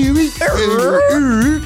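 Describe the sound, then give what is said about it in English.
A man's voice imitates a dog, making a loud, warbling ruh-roh style yelp that swoops up and down in pitch over about two seconds. “that was more like a dog. That sounded like Scooby-Doo.”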